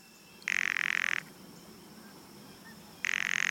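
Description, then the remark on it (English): A blue jay's dry, wooden rattle call sounds twice, loud, each burst lasting under a second with a quiet pause between; the second one is cut off at the end. “Rattles.”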